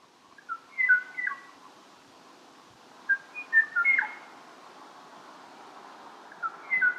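A lone Kauai o'o's song of clear, fluty whistled phrases comes in three short bursts, each followed by a pause of quiet, like a duet call left unanswered, over faint background hiss.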